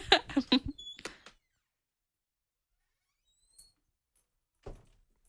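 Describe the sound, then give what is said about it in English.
A door creaks open for a dog with a short squealing groan and some rattling knocks, followed by silence, a faint tick, and a single dull thump near the end. “The creaking she's of your door”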